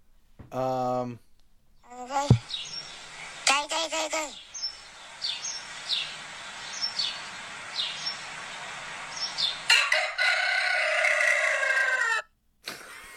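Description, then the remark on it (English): A rooster crows in short, harmonic bursts near the start, followed by repeated high chirping calls over a steady hiss, then a loud, noisy stretch before it cuts off. “We're talking to birds.”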